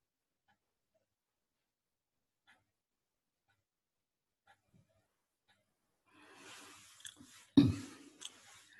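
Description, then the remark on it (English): Near silence with a few faint clicks, then someone sipping water: a soft wet slurp followed by a quick gulp and a smaller swallow near the end, with no talking. “That's kind of the usual sip of water.”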